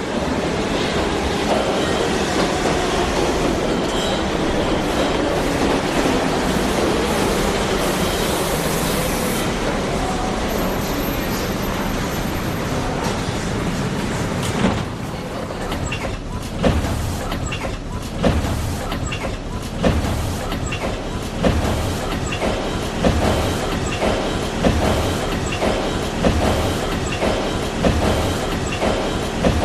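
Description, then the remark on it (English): Loud, dense rumble of a New York subway train with a brief high squeal, then settling into a steady rhythmic clickety-clack of wheels over rail joints, continuous with no voices. “Producer Paul Overton put the following piece together using only the sounds of the New York subway system.”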